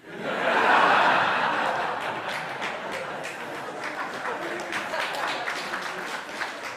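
crowd, audience applauding

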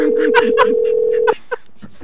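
signal or alarm, phone call dialing tones

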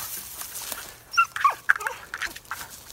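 animal, dog barking and whimpering

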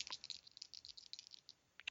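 household object, dice being rolled

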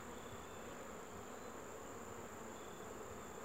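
insect, bees buzzing

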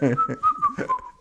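human body sound, person whistling a tune

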